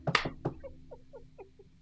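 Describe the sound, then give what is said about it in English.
Someone knocks on a front door as a reenactment: three or four sharp, loud raps in quick succession, followed by a run of softer, evenly spaced light taps that trail off. No one speaks. “So last night, I thought I heard someone knocking on the front door. So I walked down. Wait. Let me reenact this.”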